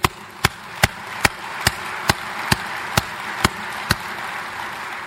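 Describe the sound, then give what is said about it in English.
Steady, evenly spaced claps ring out about twice a second, roughly ten in a row, over a continuous wash of background crowd noise with no talking. “Join me in another round of applause for the fine job they do.”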